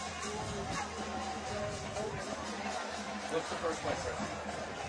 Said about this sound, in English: Good crowd here tonight.